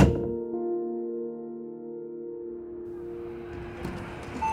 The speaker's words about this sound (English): Close the door, will you?